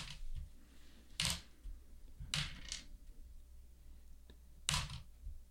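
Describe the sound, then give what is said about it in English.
Several dice clatter across a hard tabletop in a few short, separate bursts as spell damage is rolled, fairly loud, with no one talking. “That's a lot of dice rolling.”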